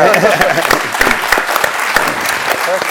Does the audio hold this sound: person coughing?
no